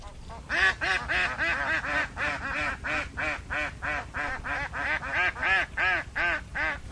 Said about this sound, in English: This flock of ducks around me belongs to a local farmer. He's just chased and caught one, handed it over to a friend or neighbour.